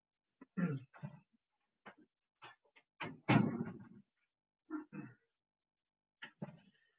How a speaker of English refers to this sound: I guess once I've got to close the door, it's a bit of noise.